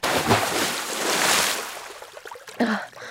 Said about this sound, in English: I lift my head from the gross water. I tripped over a gurney or something.